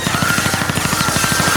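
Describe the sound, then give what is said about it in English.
A rapid, steady burst of automatic gunfire rattles on without pause, loud, coming from a cyberware wholesale building just across the street, each shot blending into a continuous mechanical stutter. “You're maybe 10 minutes into this installation when behind you, just right across the street, you hear a hail of gunfire.”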